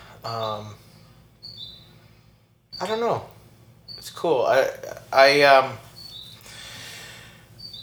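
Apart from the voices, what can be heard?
bird chirping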